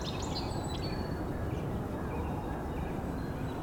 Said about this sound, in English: That really croaky, high-pitched call. Sandhill crane, but it's pretty far away.